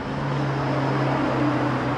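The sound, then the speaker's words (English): A steady low rumble of road traffic with a droning engine hum, holding at an even level throughout, continuous, with no voices. “Pause for traffic.”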